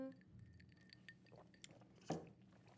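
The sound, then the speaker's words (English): A few quiet glass clinks, like glasses touched together in a toast, with short bright ringing tones and one sharper clink near the end, over soft background noise. “Well, first of all, let's start with a, you know, traditional cheers.”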